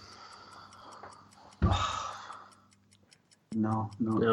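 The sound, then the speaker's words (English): A quiz countdown clock ticks steadily and quickly over a low hum through its last 12 seconds, joined midway by a loud breathy sigh, before a voice starts speaking near the end. “We're at the last 12 seconds on the clock.”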